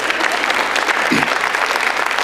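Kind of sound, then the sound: crowd, people clapping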